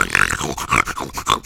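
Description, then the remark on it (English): A pig snorts and grunts in a rapid string of squealing, tonal bursts as it tries to sing, fairly loud, with no one talking. “listen, this is what a pig sounds like when it tries to sing.”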